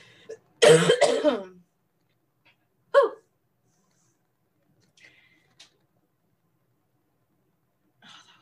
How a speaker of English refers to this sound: I need a cough too.